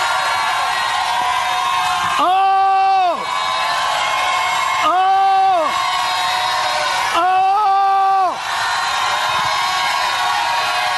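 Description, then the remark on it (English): A large crowd gives a "lion shout", shouting loudly and continuously, with three long, sustained group roars rising out of the din, each lasting about a second, evenly spaced, with no clear words. “I want to hear a lion shout here tonight.”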